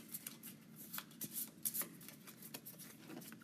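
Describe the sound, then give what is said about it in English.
A deck of question cards being shuffled, a quick run of crisp papery flicks and riffles lasting a few seconds, with no one speaking. “I got some picked out here in the meantime. Shuffle them up.”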